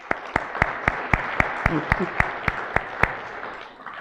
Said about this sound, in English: So please give her a round of applause.